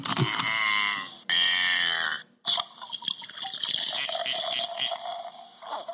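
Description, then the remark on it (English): Old Speckled Hen British ale pours steadily into a glass, a rising, gurgling fill with a brief pause partway through, then a fizzy, bubbling hiss as it settles. “Hey, let's pour and see what we think.”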